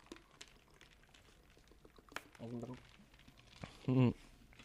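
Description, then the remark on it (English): Someone drinks water from a bottle, with two short bursts of gulping and sloshing liquid, the second louder, over a quiet, slightly noisy background. “Don't try to choke while I'm drinking water.”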